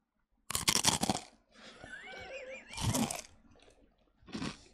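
Loud crunching of chips right at the microphone, with chips flying into the mic, in three sharp bursts, separated by quieter stretches with a faint warbling, high-pitched sound in the background.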